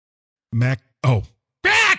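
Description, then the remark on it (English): A parrot squawk sound effect: three loud, harsh squawks in quick succession, each a short raspy burst separated by brief silences, with the last call the brightest and most strident. “It's kind of a crappy parrot, but yeah, what are you going to do?”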